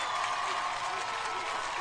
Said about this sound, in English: Wow. That's the least amount of crowd cheer I've ever heard.